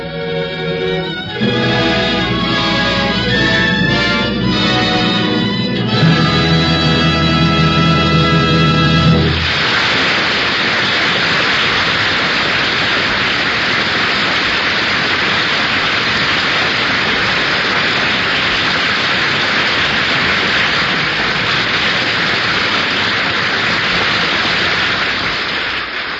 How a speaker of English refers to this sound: The audience here in NBC's Studio 6A has been applauding the final curtain of the Ford Theater's presentation of the Sinclair Lewis classic, Arrowsmith.